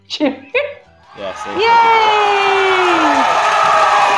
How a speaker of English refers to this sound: I'm cheering. I'm going to put the cheering.